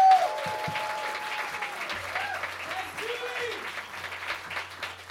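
Steady audience applause fills the room, a dense wash of clapping at moderate loudness that holds for several seconds, with a few faint tonal whistles or cheers threaded through.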